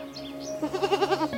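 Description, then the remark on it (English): A goat lets out a single quavering bleat, its voice wobbling in quick pulses, clear above a low steady background hum, with faint chirps just before it. “Wandering dogs, goats, and even small children.”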